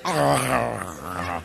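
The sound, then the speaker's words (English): A person's voice imitates a guard dog's growl: one loud, sustained snarl lasting about a second and a half, rough and throaty, with no other talk over it. “You, just like saying sick 'em to a guard dog.”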